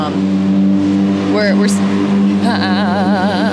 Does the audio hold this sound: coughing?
no